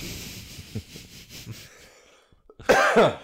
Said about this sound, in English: Thank you for that cough right in the microphone. Good cough.